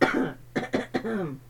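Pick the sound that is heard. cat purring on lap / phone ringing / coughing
coughing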